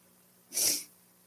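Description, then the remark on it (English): A single quick sniffle, a short airy rush of breath drawn through the nose, bright and hissy, standing alone over a faint low hum with no talking. “See, there I go with the sniffles.”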